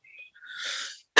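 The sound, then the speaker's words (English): A single cough, breathy and airy, heard alone after a faint high whistle-like wheeze, then cut off by a sudden loud burst of noise at the very end. “That cough.”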